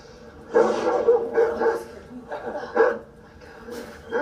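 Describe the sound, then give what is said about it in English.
Two dogs outside bark in a quick, uneven series of sharp yaps and woofs, moderately loud, with brief pauses between bursts and a faint whimpery tone in places. “Boy, there were two dogs out there.”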